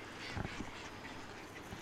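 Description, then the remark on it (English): A few short, raspy mallard quacks come in quick bursts early on as the ducks eat food thrown to them on a hill, then the birds fall quiet against a steady outdoor background hiss. The ducks sound fairly soft. “Where's that mallard band though?”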